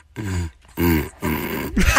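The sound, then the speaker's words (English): Gus, a dog from Australia, blows through a cardboard paper towel tube, making three hollow, droning hoots in quick succession, fairly loud, with short pauses between them and no talking. “Once again, we had fun listening to the one, the only, Gus, the dog from Australia. Who's blowing through a paper towel cardboard tube?”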